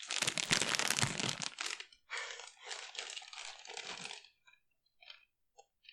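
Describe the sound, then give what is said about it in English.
A bag of Dot's Homestyle cheese curls is crinkled loudly for about two seconds, then handled in shorter bursts of crisp crackling that taper into a few faint rustles and clicks. “They're the cheese curls? Here, hold that up to the microwave for the viewers.”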